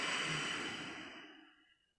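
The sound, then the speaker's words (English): A long, slow, breathy exhale after a deep breath in during a breathing exercise, starting fairly strong and gradually fading out over about two seconds, with no talking. “And out.”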